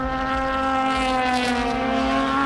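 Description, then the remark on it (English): A loud Aston Martin race car engine on a racing circuit by a forest, a steady, rasping, high-pitched roar with strong harmonic tones holding an even pitch throughout, with no voices. “So, from listening to the sound of the cars, the new Aston Martins really do sing and rasp beautifully, adding to the chorus of sounds we get from...”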